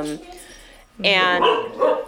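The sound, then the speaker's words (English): A dog barks in a couple of loud, harmonic bursts, a short one followed by a longer, drawn-out stretch of barking and yipping. “And neither does my dog, Franny. she just wants to play all the time. Barking in the background.”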